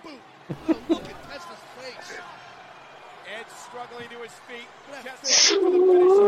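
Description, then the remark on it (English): Chatter and scattered vocal sounds lead into a loud, sustained, wavering moan near the end, a voice doing a whale-like call. “Whale noises we just heard.”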